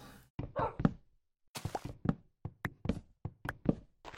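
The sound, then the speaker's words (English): Repeated wooden chopping knocks as a player chops trees for wood in a video game. They come in quick uneven bursts of sharp thunks with short pauses between, fairly loud and with no talking over them. “I always feel bad if I chop down a big tree.”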